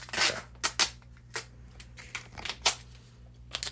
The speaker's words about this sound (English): I just have to do my traditional taping, duct taping of the phone to this lamp. Actually, could you help me with this tape?